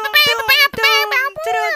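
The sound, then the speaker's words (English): An air horn sound effect blares in three quick, loud bursts, each a buzzy, high, sustained honk with short breaks between them. “It's a terrible air horn, yo.”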